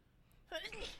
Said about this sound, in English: Bless you.